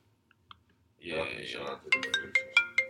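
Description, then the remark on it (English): After a second of near silence, a phone ringtone from an incoming call starts up: a warbling melodic tone, then a quick run of bright, evenly spaced chiming notes. “I think it's wilding for calling at this time of day, yo.”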